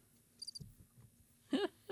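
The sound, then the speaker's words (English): A cricket gives a short, faint burst of high, rapid chirping pulses against a quiet background, followed by a brief, louder thump-like noise near the end. “I love the little cricket.”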